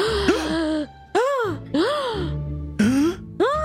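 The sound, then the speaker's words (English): A voice lets out a series of five loud, theatrical gasping cries, each swooping up and down in pitch, exaggerated, with short pauses between them. “After enjoying their fare, the ship's star entertainer, Aster Edea, drops dead in the middle of the performance. Gasp!”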